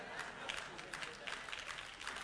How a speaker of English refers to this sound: Yeah, you're clapping, but it ain't your voice.